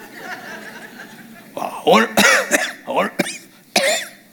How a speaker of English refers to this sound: Why do I cough all the time?